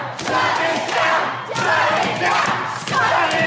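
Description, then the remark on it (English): A loud, dense crowd shouts and chants 'shut it down' angrily while sharp thuds of banging on 17-foot-high doors cut through at irregular intervals, the roar of voices continuous throughout. “Shut it down, they said, as they bang on 17 foot high doors that are never coming open.”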